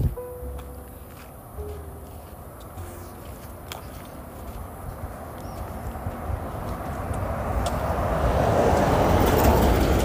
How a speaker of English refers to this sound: Another car's coming. Just hold on to that thought.